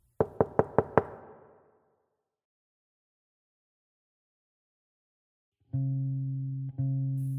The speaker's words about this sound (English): As I tried to stifle a scream, she raised a hand and knocked loudly on my front door.